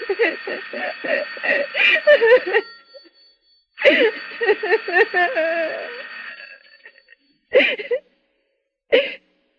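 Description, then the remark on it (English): A telephone rings in two long, shrill bursts, then two brief ones with gaps between. A wavering lower tone runs beneath the rings before everything stops abruptly. “Why do they stop ringing all of a sudden?”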